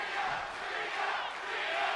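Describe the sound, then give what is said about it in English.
An arena crowd cheering during a women's division match in a sustained, loud roar of many voices, dense and steady throughout with slight swells, and no one speaking over it. “Dang, you can hear the crowd really...”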